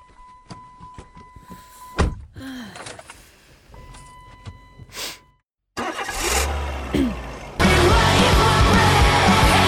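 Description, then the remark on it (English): A car's door chimes and clunks, then the starter cranks and the engine catches, settling into a loud, steady idle with no one talking. “Metal story straight from hell. Well, actually, it's my car.”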